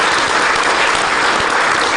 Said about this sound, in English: Clap it up. Clap it up.